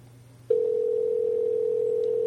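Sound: telephone ringing tone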